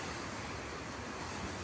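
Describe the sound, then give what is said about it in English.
Steady surf washes onto the shore in a continuous, full-bodied roar, with a faint breath of wind over the water and no voices. “And thank you to the life here, the sounds of the water,”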